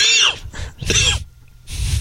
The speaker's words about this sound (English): Well, no. Here's when you started coughing.